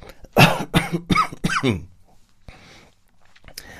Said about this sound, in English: That was a little bit of a dramatic cough, if I'm honest, but, you know, I don't know how fake or false it was